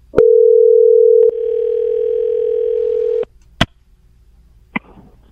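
A steady telephone dial tone hums loudly for about three seconds, shifting slightly in tone partway through, then cuts off, followed by a couple of sharp clicks as the line connects.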